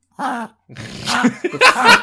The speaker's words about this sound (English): Oh. I've got a dog with me. I've got a dog with me, and he likes to wheeze sometimes.